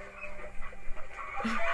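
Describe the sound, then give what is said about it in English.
Chickens cluck and squawk in a brief, busy burst, the calls growing louder and more agitated near the end against a noisy background. “I'm covering chickens, and I don't care.”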